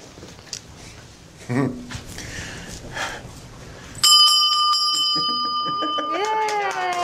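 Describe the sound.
A bright handbell, a victory bell rung by a man who has just completed his final round of chemotherapy, is struck and rings out loud, its sustained metallic tone lingering while voices cheer over the fading ring; murmuring and rustling come before it.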